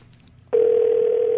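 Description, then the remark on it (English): A phone's ringback tone starts abruptly after a moment of near silence and holds as a steady, loud electronic hum until the end, with no talking. “Let's see if he answers.”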